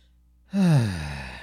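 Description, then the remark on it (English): After a moment of silence, a person suddenly chokes on a drink that went down the wrong way: one loud, throaty, strained burst of voice that drops in pitch, then trails off into a breathy rasp. No words are spoken. “It went down the wrong way.”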